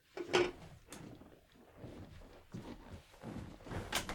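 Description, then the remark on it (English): Objects being knocked over by a man spinning around: a few sharp clatters and bumps scattered unevenly, with shuffling movement between them and no talking. “He's really knocking a lot of stuff over trying to do it.”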